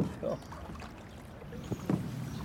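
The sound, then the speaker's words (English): A small boat moves through calm canal water in LA with a steady low wash and a few soft splashes, while faint voices murmur in the background. “They have punts, which are like a long boat with a pole. But yeah, this is very much like that.”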